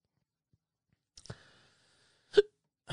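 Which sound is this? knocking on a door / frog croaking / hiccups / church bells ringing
hiccups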